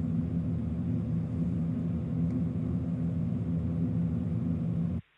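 A heating system hum: a steady, unbroken low drone with layered rumbling tones and a faint airy hiss above, holding at an even level for about five seconds before cutting off abruptly.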